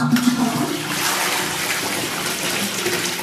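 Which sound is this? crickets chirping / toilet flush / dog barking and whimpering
toilet flush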